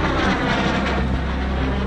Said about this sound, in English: The jets are coming too close to Duncan's radar, which is so powerful it could harm their electronics and cause them to crash.